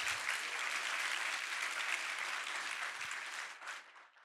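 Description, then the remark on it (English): An audience claps continuously in a dense, steady wash of applause, starting strong and gradually thinning and fading out toward the end. “I hope you're clapping for yourself.”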